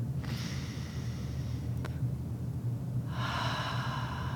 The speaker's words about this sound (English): Breathing in.